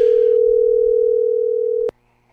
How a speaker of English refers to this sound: I'm going to make a phone call here, and I'm going to see if this person will answer the phone. Chances are they won't.